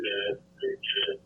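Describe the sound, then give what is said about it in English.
Three short, tinny bursts of echoing sound come through a phone line, one after another, like a voice bouncing back with harsh, ringing feedback, caused by the phone's volume being turned up. “It's echoing now.”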